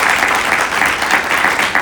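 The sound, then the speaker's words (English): Sustained audience applause for the members of a panel, a dense, even wash of many hands clapping at a steady loud level for about two seconds, with no voices standing out. “If you want to do a round of applause for them, they did great.”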